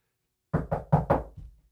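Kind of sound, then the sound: vocal imitation, knocking imitating a knock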